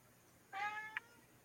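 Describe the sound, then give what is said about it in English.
A cat lets out one drawn-out meow, followed right after by a brief high chirp. The sound is clear against a quiet background, with no talking. “Yeah, I hear the cat.”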